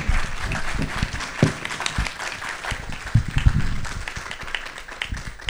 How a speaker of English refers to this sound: All right, at this time, if you'd like, you may give the candidates a round of applause for their answers.